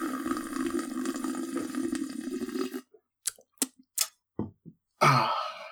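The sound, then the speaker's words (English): A long, loud wet slurp of coffee into the microphone lasting a few seconds, followed by a string of short smacking sips and gulps, then a final noisy burst. No voices. “Anytime Draga slurps, that's just the prince doing it in the background. Here, let me do it into the mic some more.”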